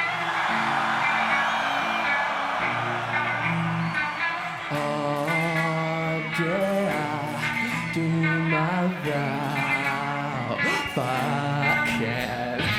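A large crowd cheers and roars continuously beneath loud live rock music, a sustained guitar riff driving through the whole stretch with steady, dense noise.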